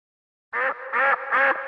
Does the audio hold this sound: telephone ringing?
no